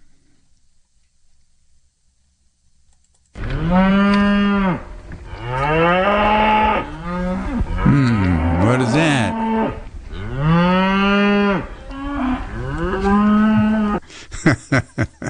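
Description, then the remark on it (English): A herd of cows walking up a road and blocking it moos loudly, long drawn-out calls overlapping one another for about ten seconds after a quiet start, ending with a few sharp clicks. A voice briefly speaks. “That was cows that I ran into when I was driving home about 2 weeks ago, driving up the road, and there was a herd of cows walking up the road and blocking the road.”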